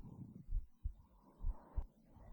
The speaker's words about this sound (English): Just focus on my heartbeat.